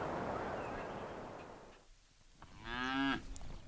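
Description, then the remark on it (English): Cows moo. A broad, low rumbling moo fills the first second or two, then after a brief lull a louder, clearer harmonic moo rises and cuts off, with no one speaking. “Cows.”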